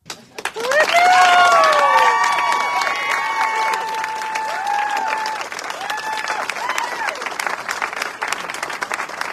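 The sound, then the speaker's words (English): A crowd bursts into loud, sustained applause with dense clapping, punctuated by high-pitched whoops and cheers that rise and fall, then the clapping thins slightly but continues steadily, cheering a woman being sworn into office in Pennsylvania. “A bunch of white leftists are cheering this on.”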